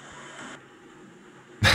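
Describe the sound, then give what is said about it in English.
After a stretch of quiet hiss, a dog lets out one short, loud bark right at the end. No one speaks. “Just a dog? Cut to a dog.”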